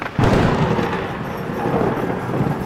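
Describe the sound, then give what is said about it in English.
A sudden, loud thunder crack from a lightning strike over a castle splits the quiet, then rolls into a heavy, sustained rumble that stays strong to the end, with no voices. “Usually when lightning strikes, the castle takes on his ghostly visage.”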